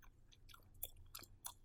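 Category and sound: food or drink, chewing food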